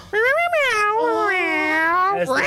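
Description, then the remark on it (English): During a tabletop role-playing game, a person voices one long, drawn-out meow, imitating a character turned into a cat, rising at the start and then wavering down, loud, with no other sounds around it. “becomes a cat.”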